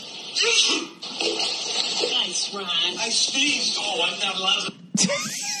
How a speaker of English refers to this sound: It's a cat near a pool. This guy sneezes, makes the cat jump and land in a pool. And then his fucking wife gives him shit.